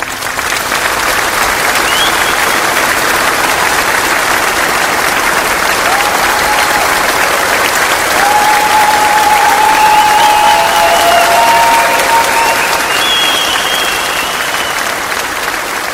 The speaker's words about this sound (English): Let's give a round of applause for our guests.